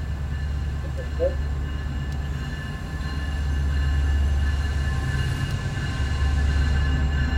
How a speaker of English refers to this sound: Metrolink train too. Are people on it? Is the train open and we didn't even know? No, I don't see anybody.